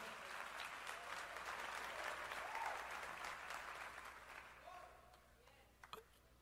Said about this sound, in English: Y'all are clapping for her saying, how did she stay with him that long? 25 years.